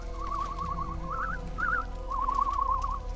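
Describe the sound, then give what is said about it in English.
Faint, wavering whistling in several short warbling bursts, rising and falling quickly around a steady pitch, half-buried under a constant low rumble of running machinery. No one speaks. “It almost sounds like whistling. It's so hard to hear over the sound of the machines.”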